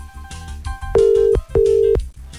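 Two loud, steady electronic phone tones pulse one after the other, like an outgoing call ringing through, over a busy background of music and faint noise.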